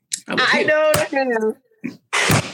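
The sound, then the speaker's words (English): A few sharp hand slaps at what was thought to be a roach but was an eyelash land among strained, excited vocal sounds, with a sudden smack near the middle followed by a couple of quicker hits. “I was slapping.”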